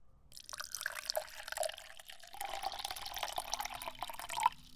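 Water is poured into a glass in a steady splashing stream that runs for about four seconds and grows slightly louder near the end, with no one speaking.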